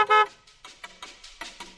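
A car horn gives one short, loud honk, followed by a string of softer, scattered noise bursts that fade in and out behind it.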